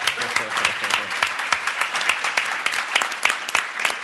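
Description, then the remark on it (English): An audience applauds steadily for about four seconds as a new partner and VP International is introduced, with many overlapping hand claps forming a dense, crackling wash that stays fairly even in loudness throughout. “And now you can clap.”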